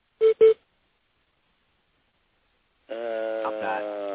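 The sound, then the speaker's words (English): Two short, clear electronic beeps in quick succession on a phone line, followed by a long silence and then people talking. “Do y'all guys hear a beep in the phone?”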